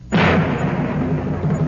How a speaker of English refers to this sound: drum roll, please.